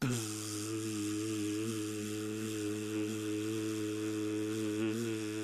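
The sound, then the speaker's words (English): A person records themself imitating a buzzing sound with their voice: a steady, low-pitched droning hum held loudly and evenly for about five seconds, with no words. “I'm going to record myself buzzing and hissing, and then we're going to lay it over each other and see what it sounds like.”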